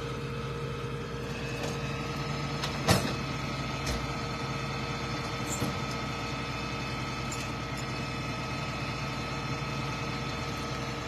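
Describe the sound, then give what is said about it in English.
A tow truck's engine idles in a steady, low droning hum, with a few brief clanks and knocks breaking through the constant rumble, as it loads a Sierra truck being taken as evidence at night. “This is Ronnie's tow truck that's bringing it in tonight.”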